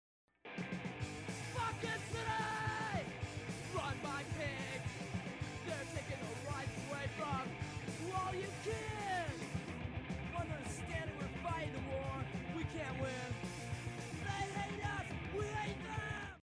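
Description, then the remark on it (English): Harsh, shouted hardcore punk vocals tear over a loud, dense wall of distorted guitars and pounding drums in a song, the yelling constant and aggressive from start to finish at full volume. “And then let's actually add when it starts to yell.”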